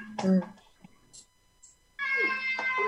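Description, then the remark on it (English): Two loud meows, a short one at the start and a longer drawn-out one after a pause, voiced by a person imitating a cat, with faint breathy noises in between. “Who's cat? It would be me.”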